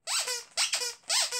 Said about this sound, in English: has some kind of squeaky sack in the upper part of her beak, which may have been the only thing she was ever supposed to do as she came out of the puppet factory.